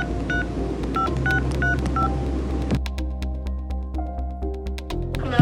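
A rapid series of short electronic dialing tones beeps over a low background hum, then steady, evenly spaced ringback pulses follow as the phone call connects, moderately loud.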